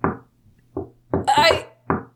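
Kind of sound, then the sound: household object, door opening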